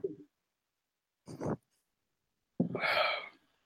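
Loud, breathy puffs of air right up against the microphone: a short one, a slightly longer one, then a big rushing exhale, with no talking.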